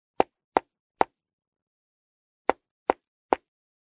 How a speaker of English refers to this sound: Suddenly, there was a knock on the driver's side window.